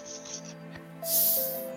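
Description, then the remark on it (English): A voice imitates a snake flicking its tongue with a sharp hiss that swells suddenly and holds for under a second before fading, with a faint hum underneath. “The snake does the tongue thing at him.”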